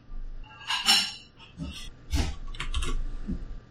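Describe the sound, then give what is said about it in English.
Dishes clatter and clink as they are set into a dishwasher rack, a run of several bright, sharp knocks spread unevenly over a few seconds, moderately loud and without talking. “Do you just let him in the dishwasher?”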